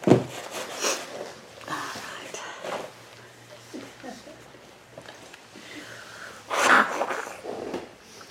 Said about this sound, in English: Got a sneeze? I don't know if it's going to come or not.